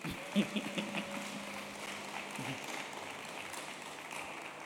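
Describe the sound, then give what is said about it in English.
An audience breaks into steady applause after a report on their contributions to the budget, many hands clapping in a dense, hissing wash that holds at a moderate level for several seconds, with a few soft thumps near the start. “I thought you would clap for that.”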